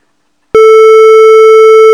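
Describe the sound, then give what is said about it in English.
After a moment of silence, a phone call drops because of internet trouble, cutting off with a click and a loud, steady electronic disconnect tone that holds unbroken for about a second and a half before stopping abruptly. “I do want to apologize for the internet.”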